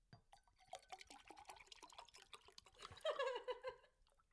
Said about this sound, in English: Would you believe I've poured the water now for the first time? Could you tell the difference? A more feminine pour.